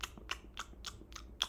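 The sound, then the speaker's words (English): A voice imitates the munching sound heard while walking around in a video game: about six quick, crunchy chewing bursts in a steady rhythm, fairly quiet, with no words. “So like, for example, what you can do is, like, when you're walking around, sometimes you'll hear, like, a munching sound.”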